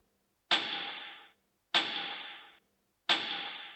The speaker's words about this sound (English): Was that a knock on the hatch?